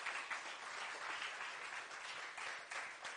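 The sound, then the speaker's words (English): An audience claps their hands together in sustained applause of praise to God during a sermon, a dense, steady wash of many hands at a fairly loud level with no voices standing out. “Come on and give God a hand clap of praise.”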